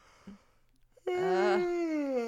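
A loud, drawn-out voiced yawn rises suddenly after a brief quiet pause, wavering in pitch before sliding down into a long, moaning exhale lasting over a second.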